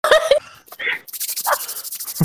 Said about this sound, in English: it sounds like you could build a fire with just rubbing your hands together.